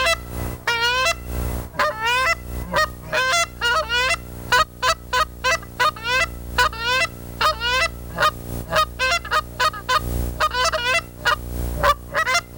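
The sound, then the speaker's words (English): A goose call, the variable tone honker, blown with a bell attached, producing a rapid series of loud, honking goose notes with rising and breaking pitch, repeated in quick bursts without any talking. “This is a call that anybody can pick up and blow with a bell on it. And this is what it sounds like.”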